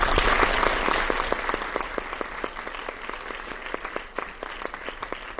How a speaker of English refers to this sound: a big round of applause for Kenton